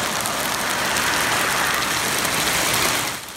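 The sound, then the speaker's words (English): Large hail from an isolated afternoon thunderstorm in Port Coquitlam pelts down onto hard surfaces, accumulating in spots, in a dense, continuous clatter, loud, a steady hissing roar of countless impacts with no voices, easing slightly at the very end. “And we can see the hail, quite large. And it was accumulating for a few spots.”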